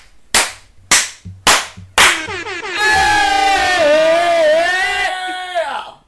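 Four sharp, evenly spaced slaps or claps ring out, then the hosts let loose a long, loud sustained shout, wavering in pitch for about three seconds before cutting off.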